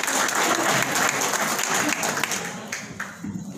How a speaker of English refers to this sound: Alright, give us some round of applause! Alright!